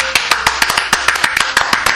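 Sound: applause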